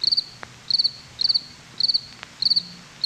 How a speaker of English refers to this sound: Yeah, those are crickets because Michael's a punk.